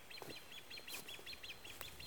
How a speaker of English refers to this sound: I mean, hearing birds chirping, singing.